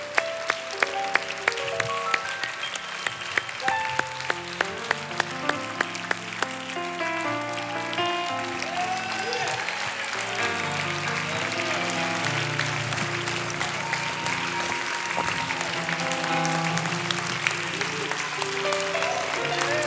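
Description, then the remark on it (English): A church audience claps steadily throughout, cheering on people coming forward for prayer, a dense patter of applause layered over sustained keyboard chords, with the crowd's noise holding at an even, moderately loud level. “As they come, cheer them on.”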